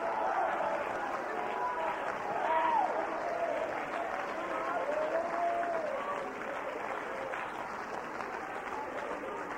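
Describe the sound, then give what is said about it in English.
An audience applauds steadily while many voices shout and cheer over the clapping, a dense, continuous roar of sound that holds loud throughout before easing slightly near the end. “Now, I don't want you to quit shouting. Please don't quit shouting.”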